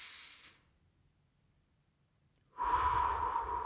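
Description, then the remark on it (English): An airy inhale followed by a pause of near silence, then a louder, rushing exhale through the mouth, one slow deep breath in and out with no talking. “Take a deep breath.”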